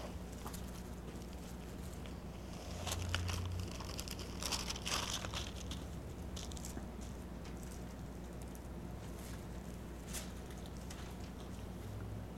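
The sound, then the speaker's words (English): Steady, dense rain hisses across the whole clip, with scattered sharp crackles and patters from drops striking surfaces, a low hum underneath, and no voices. “Now that is real rain.”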